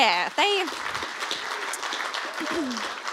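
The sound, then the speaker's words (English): A church audience claps steadily for its lead pastors with a dense, even patter of applause, with a few high whoops and cheering voices rising over it near the start and again toward the end. “Do you just want to give them a clap?”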